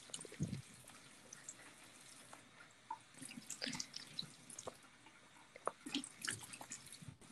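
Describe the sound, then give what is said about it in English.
Quiet splashing of warm water as hands rinse a face during a spa treatment, with irregular drips and small splashes scattered throughout and no talking. “You just want to use hands and warm water.”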